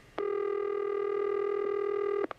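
A telephone line tone on a birthday prank call placed by Houston classic rock radio station The Eagle: one steady, buzzy, mid-pitched beep held for about two seconds, then cut off by a short click. No one speaks.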